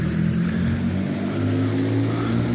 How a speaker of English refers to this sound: Hear that fountain? Beautiful fountain here in Clifton.